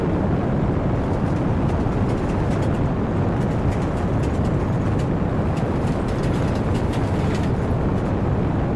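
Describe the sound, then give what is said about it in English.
Rocket engines roar at liftoff in a continuous, thundering blast of deep rumbling noise that stays loud and steady throughout, with crackling texture and no voices. “Ignition sequence start. 6, 5, 4, 3, 2, 1, 0. All engine running. Liftoff.”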